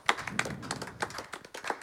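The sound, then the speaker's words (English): A few people clap their hands in a quick, uneven burst lasting about two seconds during a game of spinning a wheel and guessing letters, with sharp slaps rising above a murmur of background chatter. “Clap”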